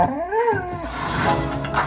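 A big dog lets out a single rising-and-falling howl, loud, lasting under a second before trailing off into a rough, noisy background.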